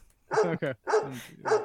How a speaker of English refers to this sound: We'll count the dog barks. We have to count the dog barks to figure out what episode number.